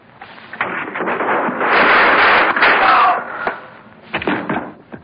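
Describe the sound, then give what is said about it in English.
Sharp gunshots crack out in a shootout in which a man is shot: a single bang, then a long harsh burst of rushing noise, followed by another shot and a quick cluster of loud reports at the end. “I just shot a man.”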